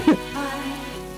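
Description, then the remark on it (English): Steady rain patters in a song recording across the whole short stretch, a dense, even hiss of drops with one brief louder splash near the start, without any voices. “And now it's some lightning. There's some rain.”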